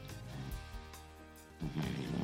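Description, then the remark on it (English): A 23-pound female dog snoring in a low, rattling rumble, with a long inhaled snore followed by a louder, breathier one near the end. No one speaks over it. “Let's see if she can still snore.”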